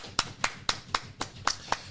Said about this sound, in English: This intro is all about the viewers, the listeners, the supporters. Round of applause for you guys one time.